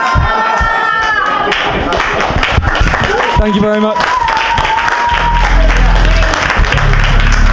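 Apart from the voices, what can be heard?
audience clapping and applause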